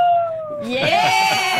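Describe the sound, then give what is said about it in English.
A radio show caller imitates a wolf howl with a long, wavering vocal tone that slides in pitch, growing louder and rougher partway through. No words are spoken. “Or can we get a howl from you?”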